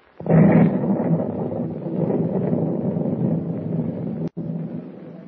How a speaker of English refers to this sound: explosion after explosion shook the ancient vessel and flames shot up from the hold